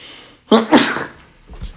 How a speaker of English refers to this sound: But you look at that game against the Falcons, and I'm going to sneeze. Or maybe I'm not going to sneeze.